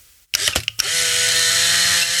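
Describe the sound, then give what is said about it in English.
A Polaroid SX-70 instant camera fires at night in a dark office with a sharp shutter click and a few quick mechanical clacks, then its motor whirs steadily and loudly for nearly two seconds as the print ejects. “But that's the beautiful sound of the SX-70.”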